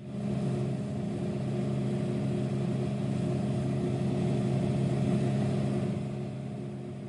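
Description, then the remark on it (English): A vending machine gives a steady, low electrical hum that drones on without a break, layered with faint buzzy overtones and a soft hiss, holding an even level before easing off slightly at the end. “Number eight is a vending machine hum.”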